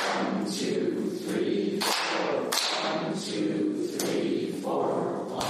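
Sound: hand clapping a rhythm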